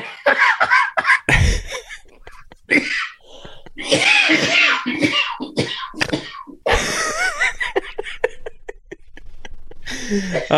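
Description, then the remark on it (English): Repeated harsh coughs burst out, tangled with loud bursts of laughter and a sneeze-like blast, the fit rising and falling in uneven waves for several seconds. “It becomes a serious thing because of …'s coughing”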